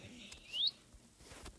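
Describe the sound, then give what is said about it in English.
A single quick, high-pitched rising chirp from a parrot in the video game Minecraft, brief and fairly clear against a quiet, faintly noisy background. “Now I have both parrots on me. Guys, Minecraft parrots, the variety are...”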